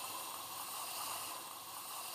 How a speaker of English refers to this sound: So what I do, I just add some water.